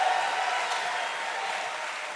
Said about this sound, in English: Give the Lord Jesus a mighty clap offering. Hallelujah.